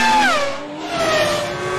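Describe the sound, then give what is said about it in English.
A race car engine revs loudly, its pitch sliding downward and wavering, with a screech of tires as the car, using too many revs, spins off at Tower Bridge on a London street circuit. No voices. “If he uses too many revs through Buckingham Palace, he'll spin off the Tower Bridge, and that's exactly what's happened.”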